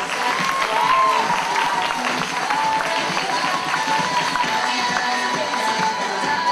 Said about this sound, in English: Round of applause for ….